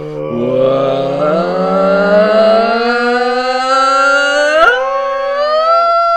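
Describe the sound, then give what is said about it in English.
A voice imitates the THX cinema intro: a loud, sustained harmonic drone that glides slowly upward for several seconds, then settles into a steady held chord with a brief blip near the end. “I wanted it to be like the THQ noise. Or THX.”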